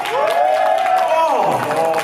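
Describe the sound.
An audience cheers to vote for the pick of Spiteful Mark Henry, with a sustained, high whooping voice that slides down in pitch near the end, over a steady patter of clapping. The whole thing is loud and lasts about two seconds.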